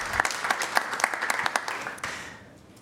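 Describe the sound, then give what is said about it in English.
An audience applauds to honor members for their service, dense overlapping claps at steady volume that thin out and fade over the final second. “And if everyone will please give them a round of applause for their service.”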